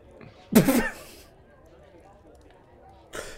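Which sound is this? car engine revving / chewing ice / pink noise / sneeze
sneeze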